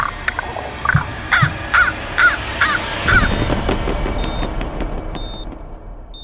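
A raven caws about six times in quick succession, harsh, then falls silent as a low rumble of background noise continues.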